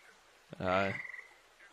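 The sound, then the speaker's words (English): A single short, throaty croak, fairly loud, most likely a person's voice imitating a frog, with quiet background hiss before and after. “And he would go down there, and he would be lulled to sleep by the croaking of the crickets, no, the frogs, and the buzzing of the bugs.”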